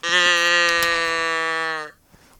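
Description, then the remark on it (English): A single loud, drawn-out cow moo lasting about two seconds, holding a steady pitch that sags slightly before cutting off abruptly into near silence. “Oh, a moo noise.”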